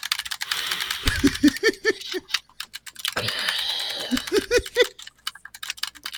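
Rapid, clattering keystrokes on a computer keyboard while playing the game Doom 95, which is controlled entirely by keyboard, come in two fast, forceful bursts, fairly loud, with a few scattered taps trailing off at the end.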